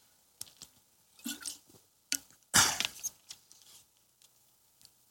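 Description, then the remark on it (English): Wet mouth sounds of the speaker drinking water: a few quick sips and gulps with soft squishy swallows, the loudest burst in the middle, then quieter clicks trailing off. No one speaks. “Water break for me, sorry.”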